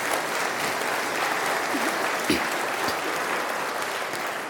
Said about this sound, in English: Come on, give a clap offering to Jesus. Come on.